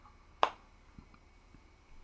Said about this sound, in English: And now imagine what your fingers snapping would sound like behind your head. Then reach behind your head and snap your fingers.